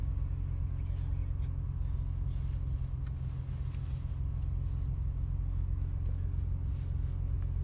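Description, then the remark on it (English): A car engine hums low and steady as the vehicle eases forward gently on ice, launched softly, a continuous rumble with no sharp revving, lasting the whole stretch. “driving cars on the ice on purpose”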